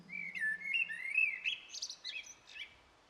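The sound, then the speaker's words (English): A blackbird sings a flowing, fluty phrase of rising and falling whistled notes, ending in higher chirpy twitters, with a soft low hum underneath at the start. “Blackbird Blessings - Visualisation - Birdsong - Harp”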